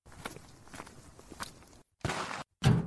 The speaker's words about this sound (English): Ouch! I banged my knee on something. What is that thing, huh? A wheelbarrow? Why would anyone leave a wheelbarrow out here?